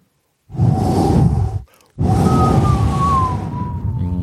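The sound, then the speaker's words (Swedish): A howling storm sound effect for a radio play: two loud gusts of roaring wind, split by a brief lull, with thin whistling tones that slowly slide downward through the second gust. No voices. “Jag satt i stugvärmen och stickade och lyssnade på radio och den ylande stormen utanför.”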